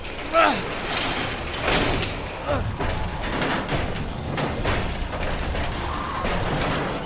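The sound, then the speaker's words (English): An auto shop's garage door rattles and rumbles shut in one continuous, steady grinding noise lasting several seconds, while voices shout over it at the start. “Close the garage!”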